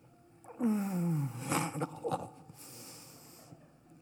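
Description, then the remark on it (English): A single drawn-out yawn from a person, its voiced tone sliding downward before trailing off into a breathy exhale and soft sighing breaths. “Yawns again.”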